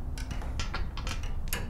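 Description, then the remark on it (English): Crisp mechanical clicks and ticks repeat at a quick, slightly uneven pace over a steady low hum from a church tower clock mechanism. It sits in the middle of a small, square, sun-filled room with massive glass clock faces on each side, and its winding mechanisms take up the entire room. “In the middle of the room sat the clock itself.”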